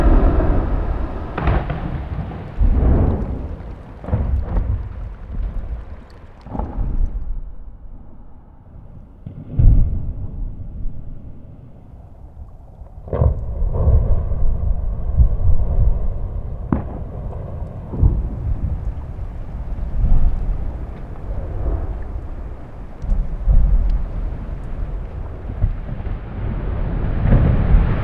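Distant glacier calving: a chunk of ice breaks off the top, free-falls and smacks the water. Deep, rolling rumbles broken by several sharp, booming impacts, with a low continuous roar between the cracks and no voices.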